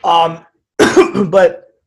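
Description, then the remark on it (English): A man who has COVID clears his throat twice, a short rough rasp followed by a longer, harsher double-pulsed clearing after a brief pause, fairly loud with no speech. “Apologies, by the way, for continuing to clear my throat.”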